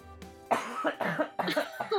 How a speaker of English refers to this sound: And then I died of consumption. Literally, just every time you cough, it's not anime mom disease.